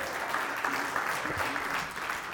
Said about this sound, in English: Give me a hand clap, because that's just good stuff there.